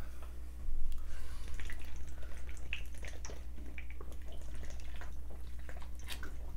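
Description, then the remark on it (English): Water pours into an open mouth without swallowing, giving a continuous wet splashing and gurgling with scattered drip-like pops over a faint low hum. “I was not swallowing as I was drinking there.”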